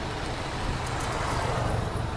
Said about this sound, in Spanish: Un poco demasiado tráfico, ¿no? Sí, mucho.